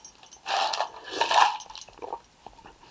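A brief sip of water from a glass, with a light clink and a soft slurp lasting about a second, then quiet handling noises. Nobody speaks.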